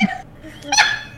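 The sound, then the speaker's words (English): A single quick, sharp sneeze, a short burst that rises suddenly out of quiet and fades within a fraction of a second. “Bless you.”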